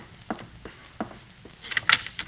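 A front door being opened: two dull knocks or steps, then a bright rattling clatter of the latch and handle, short and moderately loud, with no voices.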